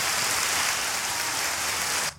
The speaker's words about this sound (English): Hey, look, so, get some applause for the listeners.